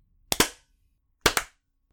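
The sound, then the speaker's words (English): Sharp hand claps made to sync the audio recordings of several people sound in two quick double bursts, each pair a near-simultaneous crack-crack, the second pair following about a second after the first. The claps are loud, with silence around them. “So, we're gonna clap again.”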